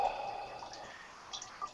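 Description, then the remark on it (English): A man urinating into a toilet: a thin, steady trickle of liquid splashing into water, with small drip-like accents, quiet, and no talking. “I'm gonna stop talking about it while he's peeing.”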